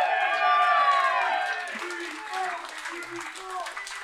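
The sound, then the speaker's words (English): A crowd breaks into loud, sustained applause with cheers and high whoops rising over the dense clapping. It eases off slightly toward the end but keeps going. “And let's hear it for”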